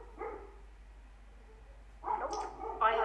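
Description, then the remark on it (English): A dog barks in short bursts: a single bark early on, then a quick, louder run of barks near the end, against a quiet background. “Okay, this dog needs to shut up because I'm done with you.”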